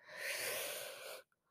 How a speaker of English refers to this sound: It makes me yawn, weirdly, so sorry if that makes you yawn too.